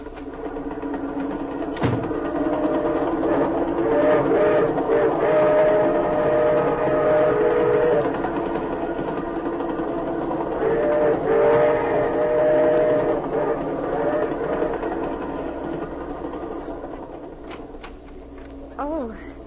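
A moving passenger train rumbles steadily and loudly, with a droning, whining tone rising and falling over the roar and occasional sharp clicks and knocks from the wheels.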